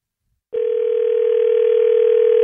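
An outgoing phone call's line tone begins after a brief silence and holds as one steady, loud, unbroken hum at a single low-mid pitch until the end, with no voices.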